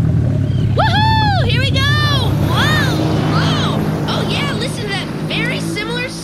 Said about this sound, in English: Oh. I'll go ahead and start up this boat.